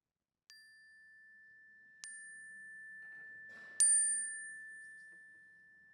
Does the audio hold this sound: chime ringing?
yes